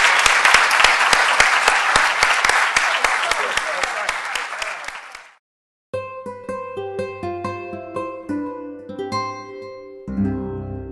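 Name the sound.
rousing round of applause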